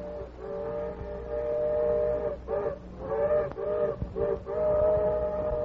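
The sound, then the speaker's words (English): A steam locomotive whistle sounds a long, chord-like blast, breaks off briefly a few times, then resumes, carried over a low rumbling background as if from some distance away. “The Lone Ranger heard the engine's whistle in the distance”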